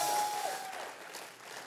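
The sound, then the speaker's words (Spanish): A crowd claps together in a dense, steady wash of applause that fades slightly toward the end, with a thin sustained tone audible briefly at the start and no one speaking. “Si le va a dar un aplauso, dáselo fuerte, por favor.”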